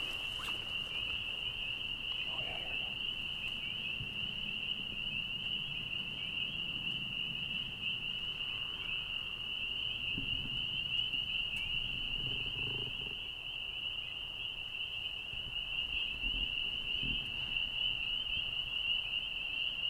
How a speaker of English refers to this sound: When the 5 minutes is over, we've heard two species of frog, the spring peeper and the leopard frog.